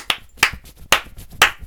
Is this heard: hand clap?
yes